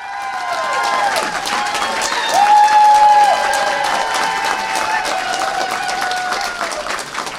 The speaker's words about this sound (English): Let's just keep naming things so they have to keep clapping.